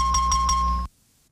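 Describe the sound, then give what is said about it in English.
A bright electronic chime signalling a correct answer in a quiz game rings out in three quick pulsing bursts over a steady tone, with a strong low hum underneath, then cuts off abruptly, leaving near silence. “This means you're correct.”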